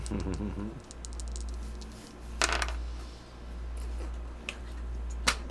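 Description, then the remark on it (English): Dice are rolled for an education roll, rattling and clattering across a surface in a quick burst of clicks near the middle, followed by a couple of single sharp taps, over a steady low hum, with a brief voice at the start. “Give me an education roll. Come on, dice.”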